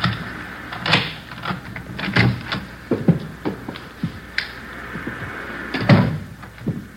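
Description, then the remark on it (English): A key jiggles and clicks in the lock of a house's front door, followed by a series of sharp metallic clunks and rattles as the door is unlocked and pushed open, with no talking. “There's the front door key. See if you can work it. I know how it works. You go ahead and open it.”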